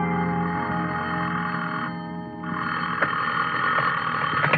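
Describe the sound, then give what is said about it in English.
A telephone bell rings loudly and close by, right in a sleeper's ear at 11, a sustained metallic jangle that briefly dips partway through before ringing on again. No one speaks. “The only reason I woke up then was because somebody was ringing a telephone in my ear.”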